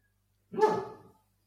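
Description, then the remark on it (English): A person imitates a dog with a single loud bark, a rough voiced burst lasting about half a second before fading out, with silence around it. “It's a good impression of a dog, by the way.”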